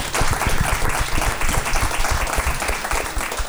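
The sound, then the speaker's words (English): A steady round of applause from a crowd after an audience member's question is answered, many hands clapping in a dense, continuous patter at an even loudness for a few seconds, with no one speaking over it. “Round of applause.”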